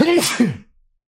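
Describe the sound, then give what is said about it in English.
One loud sneeze with a quick voiced intake, a sharp breathy burst, and a short trailing vocal sound, heard on its own before fading to silence. “It's not live, but it's live to me, so I'll sneeze anyway.”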